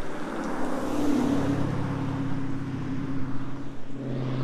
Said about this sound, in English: Loud cars.